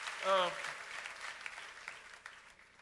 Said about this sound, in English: If today is your first time at a God Rigging service, only you shout hallelujah. Hallelujah. Okay, let's clap for them. You know, they're excited that they're here. So we welcome them.